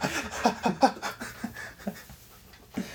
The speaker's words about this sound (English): We just hear heavy breathing on the mic.